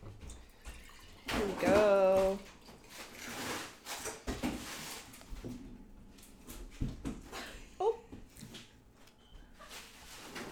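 A drink is poured into a glass, a short gurgling splash whose pitch rises as it fills, followed by quiet clinks, shuffling and faint background voices.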